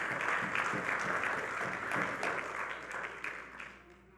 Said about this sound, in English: Then give God some praise. Clap your hands and give God some praise.